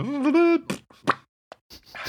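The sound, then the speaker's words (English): A person makes a fart noise with their mouth: a buzzy, wavering lip sputter lasting about half a second, followed by several short, breathy bursts and puffs. “fart noise with my mouth.”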